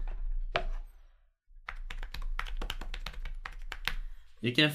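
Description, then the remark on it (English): Rapid typing on a low-travel folio keyboard, a quick irregular run of soft, flat clicks, briefly pausing before resuming at a steady pace. “Let our listeners hear how it's typing. So would you type for me something?”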